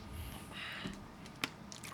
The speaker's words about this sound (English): You had to take a drink of water. Drink of water, dog.